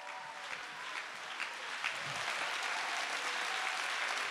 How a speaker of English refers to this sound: Can somebody stand and clap your hands and give God the praise?